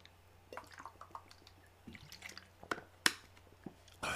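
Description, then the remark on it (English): Water being poured into a glass, with uneven splashes and drips, a few sharper clinks, and a steady low hum underneath. No one speaks. “So let me get some water at least.”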